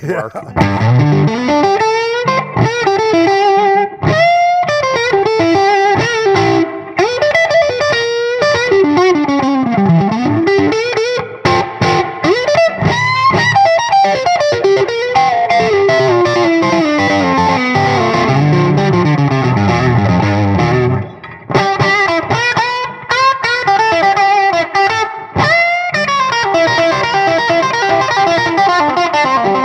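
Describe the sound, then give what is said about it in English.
An electric guitar in standard tuning, strung with String Joy strings, runs through distortion and modulation effects, playing a loud, sustained, continuous phrase of bending notes and chords with a thick, saturated tone for about half a minute. “So what strings, and that's standard tuning, what strings yeah. are you running on this one?”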